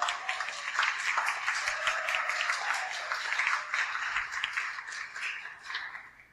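A round of applause from a group at a seminar, giving gratitude to the host of the space: dense, crackling clapping holds steady for about six seconds at moderate loudness, then thins out and fades at the end, with no talking over it.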